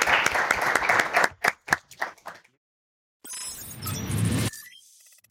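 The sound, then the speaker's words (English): A short burst of loud applause from an audience as a speaker is brought up thins out into a few scattered claps and stops. After a brief silence, a different rumbling, rushing noise plays for about a second. “Thunderous applause.”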